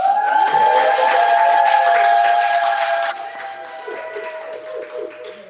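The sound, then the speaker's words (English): An audience applauds a show's co-host being introduced, with dense, steady clapping and a sustained high cheer or whistle over it. It is loud for about three seconds, then drops to softer, scattered claps. “So everybody, let's give a round of applause for the creme de la creme,”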